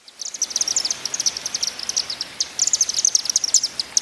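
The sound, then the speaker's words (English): Chimney swifts chatter in a rapid, high-pitched stream of twittering chips, dense and continuous for several seconds, steady in loudness, with no voices. “So the bird we're featuring today is a charming little guy called the Chimney Swift.”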